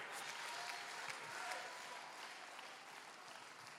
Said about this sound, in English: Oh, I wish you would clap your hands. Come on, clap your hands, lift your voice.